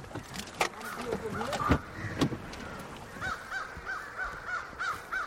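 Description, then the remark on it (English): A flock of crows caws continuously at their evening roost around 6 o'clock, in a neighborhood of tall pines and oaks near a ball field. Overlapping harsh calls form a busy chorus, with a few sharp knocks and clatters standing out early on. “We're at about 6 o'clock, where we'd certainly expect to see crows trying to roost here for the night.”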